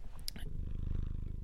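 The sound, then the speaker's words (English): A male cat sitting on a person purrs with a deep, bassy purr that rumbles steadily and close up, a continuous low vibration with brief soft rustling near the start and no talking. “Can you hear the purr? I hope so. He's got a very bassy purr.”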